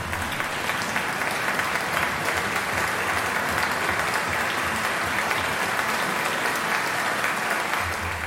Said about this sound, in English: I mean, it even has the applause, you know, at the end.